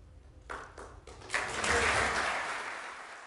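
Hesitant applause after a speaker thanks outgoing leader Boris Johnson: a few scattered claps at first, then more hands join into a brief, moderate burst of clapping that slowly thins out. No voices.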